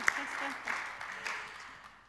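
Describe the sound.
A short round of applause from a group, a dense, steady patter of clapping at moderate volume with a few sharper claps and some faint voices mixed in.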